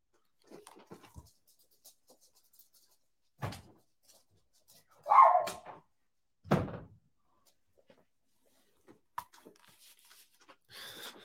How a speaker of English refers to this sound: Okay, you know, can you give me 1 second? My dogs are trying to get out of the room. I guess they're getting bored with the show. I'll be right back.